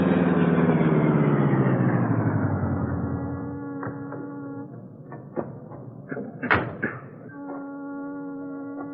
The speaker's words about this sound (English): Britt Reed and Cato drove in the Black Beauty to the docks at the foot of Water Street. There, the powerful streamlined car was brought to a stop in the shadows.